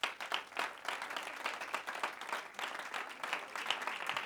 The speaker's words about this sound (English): Could I just hear you clap your hands unto your God?